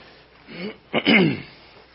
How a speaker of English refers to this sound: Clear my throat.